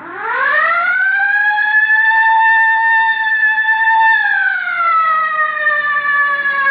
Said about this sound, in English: All right, hit the siren.